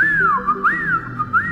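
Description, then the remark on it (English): A person whistles a short rising-and-falling tune to call a hawk, three clear looping swoops in quick succession, steady, with no talking. “So I give a whistle.”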